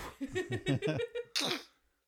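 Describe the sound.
A voice imitates the sneeze of Gizmo, a cute little creature: a series of squeaky, high-pitched catching breaths building up, then one sharp, hissy burst before it falls silent. Fairly loud.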